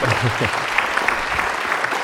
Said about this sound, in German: Ich danke Ihnen ganz herzlich, aber vor allen Dingen danke ich Daniel Hope, dass er sich die Zeit heute genommen hat. Und ich würde sagen, das gibt nochmal einen tosenden Applaus, oder?